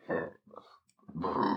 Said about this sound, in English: Excuse me. Yo, speaking of burps